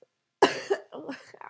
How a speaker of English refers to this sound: Why don't you give him a old smoker's cough